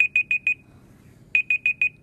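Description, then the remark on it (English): A timer alarm goes off, sounding two bursts of four quick, high electronic beeps separated by a short pause, clear and fairly loud with no voices over it. “All right, time's up.”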